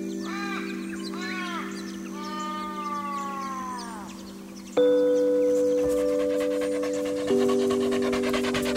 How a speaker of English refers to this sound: And then she feels it, licking, wet, slobbery, wonderful licking. A dog. No, dogs, all around her. They lick at her face, nuzzling their snouts into her cheeks, drying her eyes with their fur, then resting themselves on her lap.